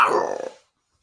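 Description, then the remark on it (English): A voice imitates a monster's shriek of displeasure: one harsh, raspy screech lasting about half a second, which breaks into a rattling, growl-like flutter before cutting off into silence. “As it shrieks in displeasure, like,”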